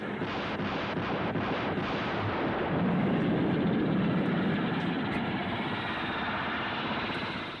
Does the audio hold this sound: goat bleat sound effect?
no